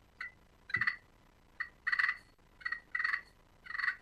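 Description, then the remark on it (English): Turkey purring on a slate call, made with very little pressure on the striker: three paired phrases, each a quick high chirp followed by a longer, fluttering rolling purr, moderately loud with quiet gaps and no voices. “I mean, and it's going to try to get this thing, these cameras and everything, but purring on the glass call or a slate call, it's.”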